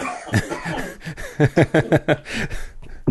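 A close, loud coughing fit: sputtering hacks at first, then a rapid run of about five harsh, choking coughs in a row, trailing off into a ragged breath.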